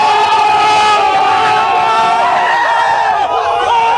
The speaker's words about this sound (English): And as this crowd is chanting that there are members of the press here who suck, I should also point out, well, what also sucks, getting the coronavirus.